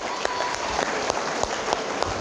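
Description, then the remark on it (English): An audience at a pendulum demonstration claps steadily in dense, overlapping applause for a volunteer who did not flinch, a bright wash of hand claps with a few sharper individual claps standing out, lasting a couple of seconds. “He's done it without flinching. Give him a clap.”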